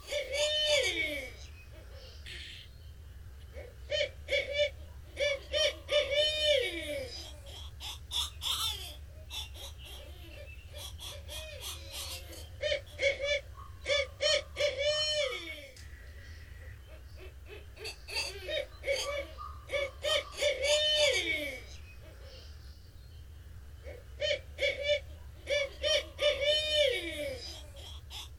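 A barred owl, also called the hoot owl, a very large owl native to eastern North America, gives its hooting call: repeated rising and falling hoots and wild cackling, caterwauling bursts in uneven series, loud over a steady low background hum. No one speaks.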